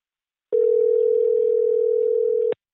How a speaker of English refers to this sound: Okay, all right, we're calling now. Here we go. Here we go. And we are ringing. Okay.